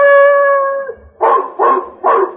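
A large Belgian shepherd dog bays outside a modest apartment house on a street corner in New York, looking up at a ground-floor window: one long, drawn-out howling note, then three loud, evenly spaced barks, with no other sounds around it.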